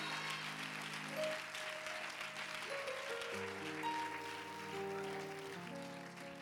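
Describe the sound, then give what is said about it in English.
A large audience claps steadily and loudly for several seconds while sustained organ chords play underneath; no one speaks. “Go ahead and clap, but I've got to ask a question.”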